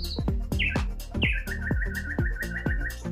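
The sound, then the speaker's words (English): A bird chirps clearly, with a few bright whistled calls followed by a quick, steady run of repeated tweets, heard over a soft rhythmic thumping beat. “Oh, did you see that behind you? That's like a really nice bird.”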